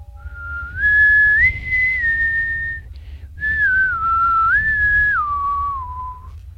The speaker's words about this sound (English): Every candle snuffed out, no light besides this guide, and you hear the whistle on the wind once more.